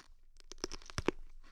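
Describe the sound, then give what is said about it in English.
A bite into a crunchy pickle right into the microphone, a short cluster of crisp, wet crunches over about a second, moderately quiet and with no talking. “First, we're going to do a bite into the mic and get the crunch factor.”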